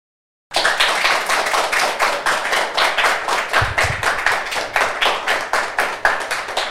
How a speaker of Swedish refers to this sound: Fånga upp lite mer applåder här.